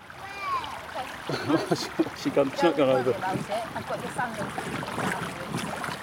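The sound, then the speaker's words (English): Steady splashing and swirling of shallow river water from someone wading upstream and loosening the gravel stones underfoot, with faint shifting of gravel, while people talk over it throughout. “So what I'm doing is loosening the stones and I'm moving upstream. I'm just getting into the gravel.”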